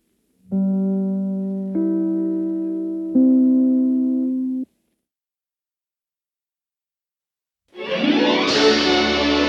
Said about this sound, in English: We'll be back in a moment as soon as I ring my chimes. This is NBC, the National Broadcasting Company.